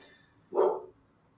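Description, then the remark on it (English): A single short bark, voiced by a person imitating a dog, bursts out clearly and fairly loud for about half a second, then quiet returns. “That was me too. I'm able to do voices far away. Dog voice.”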